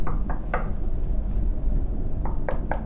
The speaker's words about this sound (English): A knock is at the door.